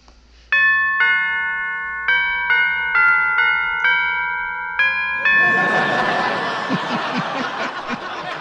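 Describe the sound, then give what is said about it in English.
The doorbell of Bing Crosby's house chimes a long melodic tune of about ten clear, ringing notes, loud, before a burst of laughter and crowd noise washes in over the final tones. “I'll ring the doorbell.”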